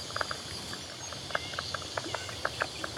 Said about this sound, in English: These popping sounds are definitely from striped marsh frogs. Nice detective work.